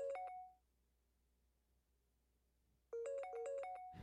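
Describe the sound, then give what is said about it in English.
An outgoing phone call rings out unanswered: a short melodic chiming tone plays, pauses for a couple of seconds, then repeats, clear with no voices. “will answer this phone call”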